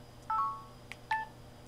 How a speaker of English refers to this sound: And you can turn off that beep if you don't like it. I know a lot of people don't.